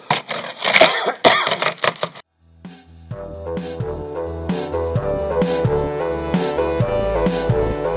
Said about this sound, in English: Can use too much hash oil, can you? Yeah, because it ends up making me cough.